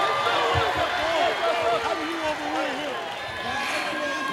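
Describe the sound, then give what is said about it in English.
A loud, sustained roar from a packed basketball arena crowd, many voices cheering and shouting over one another in a dense, continuous wash of sound, reacting to a foul call during the game. “The crowd loves it, though.”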